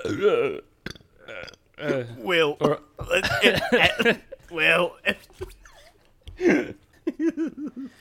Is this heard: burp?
yes